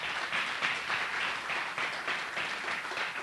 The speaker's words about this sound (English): Can you give her a hand clap for that?